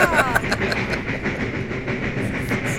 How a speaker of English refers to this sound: we have had trains on the show before, the sounds of the steam engines, but this is a special one. This is sounds of the Strasburg Railroad, Strasburg, Pennsylvania.